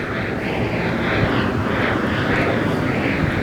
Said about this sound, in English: There's one of Sherman Oaks' great jet air fighters from the Sherman Oaks Angels. They just did a flyover. They're about an hour late. They were supposed to be here to start the match.